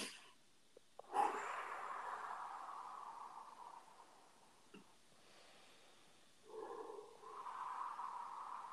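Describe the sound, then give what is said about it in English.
Two long, airy deep breaths, the first a sharp intake trailing into a slow exhale, the second following after a short pause, with no talking. “And I just take a couple of deep breaths so we can do that.”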